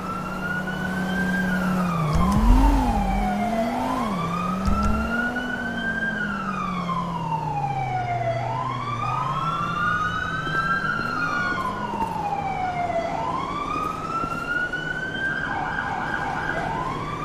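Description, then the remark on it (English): A loud ambulance siren from an EMS Tahoe wails steadily, its pitch rising and falling in long repeating sweeps, with a low engine rumble underneath and no one speaking. “There's the ambulance.”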